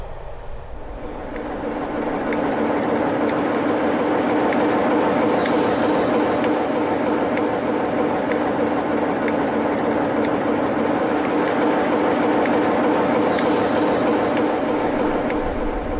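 A train's steady, loud rumble at Crewe railway station, with faint regular clicks ticking about once a second over the continuous mechanical drone. No one speaks.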